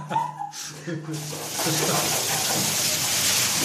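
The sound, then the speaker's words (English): Water is poured by a man from a massive, very heavy pottery urn at 2 a.m. while on holiday in Barcelona, a steady rushing splash that starts after brief voices and continues strongly to the end. “Fortunately, though, my brother was on hand to do the pouring.”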